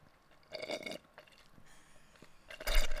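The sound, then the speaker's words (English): Wet slurping of water through a straw in two bursts, a short pull early on and a louder, longer one at the end, with quiet gaps between and no talking. “I'm hearing some slurping.”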